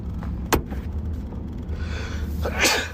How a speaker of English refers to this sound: And I gotta sneeze.